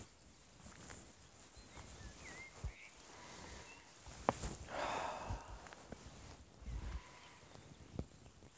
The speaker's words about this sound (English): There are some horses, like 50 meters from here is a horse.